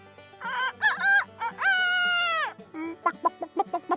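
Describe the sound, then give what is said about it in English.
A rooster crows loudly, a rising call with a long sustained note, followed by a quick run of sharp clucks. “They went a little further, and they met a rooster.”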